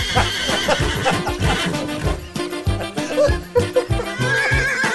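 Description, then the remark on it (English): A horse neighs and whinnies loudly over a dense, rhythmic backdrop of thumping low beats, with a shrill, wavering whinny rising toward the end. No one speaks. “What are you doing to that horse?”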